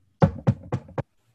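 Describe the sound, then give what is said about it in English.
Four firm, evenly spaced knocks on a door marked with an X symbol, fairly loud, in a steady quick rhythm with silence after. “She leads you away from the computer room and like toward down to like a room with an X symbol on the door. She knocks.”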